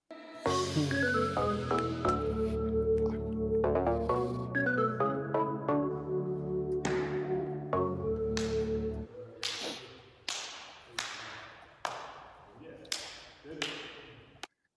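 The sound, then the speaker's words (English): A short burst of music gives way to a quick run of about eight sharp hand slaps, loud crisp smacks in an uneven rhythm, with no one talking. “Let's slap hands.”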